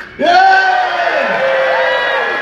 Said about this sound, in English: No, so can we get a big cheer for Odyssey 7?